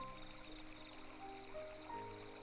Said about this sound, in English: The water is finding its way along this brook with great efficiency. No stopping the flow of this beautiful brook. Look at the water with me. The droplets dancing a dance as they hurtle down the path